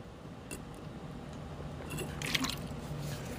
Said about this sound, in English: Let me take a sip of my drink, okay?